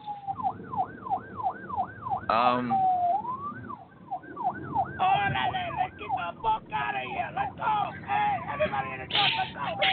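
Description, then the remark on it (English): Police car sirens wail in rising and falling sweeps, then shift into faster overlapping yelps as several sirens sound at once, loud and continuous, with some voices mixed underneath, as three police cars pull up outside. “We got three cars just pulled up outside.”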